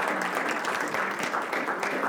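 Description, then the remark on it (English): An audience claps their hands to the Lord to say thank you, in a steady, dense wash of applause, many overlapping claps blending into a continuous rattling roar at an even level throughout. “Let's just clap our hands to the Lord and say thank you for all that he's going to do, because we're believing and trusting in him.”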